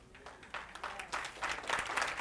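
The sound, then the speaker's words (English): A church audience claps steadily during a sermon, the dense patter of many hands building slightly louder toward the end, with no voices over it. “I'm gonna wait while you all clap your hands because that's true.”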